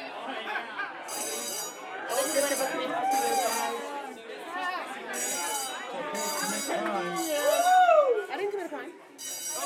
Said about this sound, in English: Now this big blaring alarm was just sounding off, and I got freaked out because I was thinking, if this is an actual fire, this is not how I'm going to die.